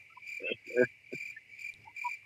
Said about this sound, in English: The cricket. Really? Where did you get those from?